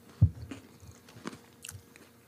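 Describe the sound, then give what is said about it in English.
Someone chewing snacks, with an initial crunchy bite followed by a few softer, irregular crunches and mouth sounds, fairly quiet and with no talking. “And get settled and get our drinks on and get our snacks going.”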